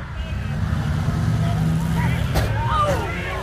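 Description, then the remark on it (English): Demolition derby cars painted with crossbones and American flags roar around a track, with drivers speeding both forward and backward, in a loud, steady rumble of revving engines, with a murmuring grandstand crowd underneath and a few sharp squeals near the end. “the drivers speed around the track backward with as much skill and speed as they do forward”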